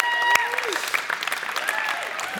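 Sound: applause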